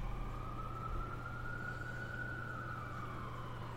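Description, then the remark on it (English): An emergency siren wails in one long, slow rise and fall over a steady low rumble in a big city, faint but continuous throughout, with no one speaking. “And sometimes it's just life in the big city that gets in the way. Like that siren.”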